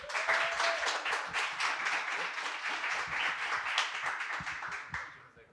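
An audience breaks into applause to welcome a guest, many hands clapping in a dense, steady patter that holds for about five seconds before quickly tapering off.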